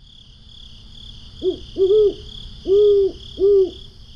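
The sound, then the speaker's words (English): An owl hoots four times in a halting rhythm, the low, clear calls standing out over a steady background of insects or night noise and faint low rumble. “I love how Carl describes that when night goes dark for us, the world comes alive for Alfie and other owls.”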